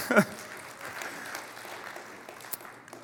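An audience claps in a steady, dense patter of applause, moderate in volume, with a brief louder burst at the very start and a few sharper claps standing out near the end.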